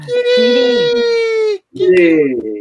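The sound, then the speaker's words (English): A tired cat gives a drawn-out, whiny yawn: a loud, tonal vocal stretch that slowly sags in pitch, then after a brief pause a second, shorter squeaky moan that also trails downward. “Aw, it yawned.”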